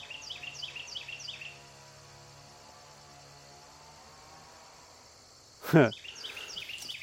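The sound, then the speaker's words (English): Bright, repeated bird chirps trill at the start and return near the end in a wooded area with a meadow nearby, set against a steady low drone of an engine in the distance and one brief, loud rustling burst. “The bird song and being here in this wooded area with a meadow nearby”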